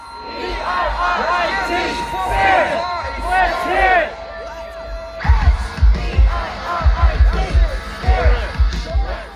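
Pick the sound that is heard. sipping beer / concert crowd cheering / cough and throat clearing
concert crowd cheering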